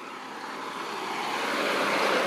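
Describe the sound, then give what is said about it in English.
A large truck rumbles closer, its broad engine and road roar steadily swelling in loudness over a couple of seconds, with no voices present. “Hold on, a truck coming.”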